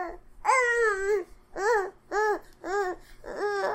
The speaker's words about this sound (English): Sorry for the 3 minutes of baby noise at the end. That's sort of the outro these days.